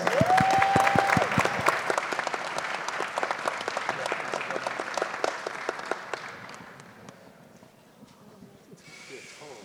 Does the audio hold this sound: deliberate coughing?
no